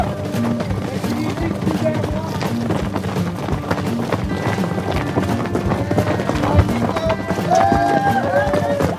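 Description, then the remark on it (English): At a race start around 6:30, about 20 runners and a dozen horses set off: a busy outdoor scramble of running footsteps and clip-clopping hooves, dense and steady throughout, with scattered voices and whoops in the crowd and some wind rumble on the microphone. “So all the runners get down into this wash first, come up into this barren desert, and pretty quick, on your right, come the horses.”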